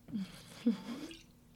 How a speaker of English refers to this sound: Okay, another sip, talk amongst yourselves.